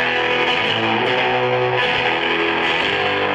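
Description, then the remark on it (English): A distorted electric guitar with jumbo frets, a shredder-style guitar, played without pedals, plays sustained, buzzing notes and chords with thick, saturated harmonics. The sound stays steadily loud throughout, with a few shifts in pitch and no voices. “Exactly, and it has jumbo frets, so it was kind of a shredder's guitar back when it was made.”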